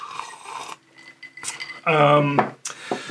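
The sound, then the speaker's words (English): A whiskey glass is handled and sipped from: soft clinks and shuffling, then a brief ringing, tonal clink of glass, followed by a few quieter knocks, with no talking. “So Neuralink is, let me take a sip of my whiskey here really quick.”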